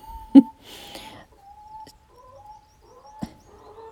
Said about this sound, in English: Ooh, I wonder if that's an egg. That sounds like a chicken laying an egg, doesn't it? They all have their own song.